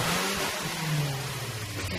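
A Nissan Navara 4x4 engine revs up loudly and steadily in a studio, its low throaty drone rising and holding for a couple of seconds with no voices over it.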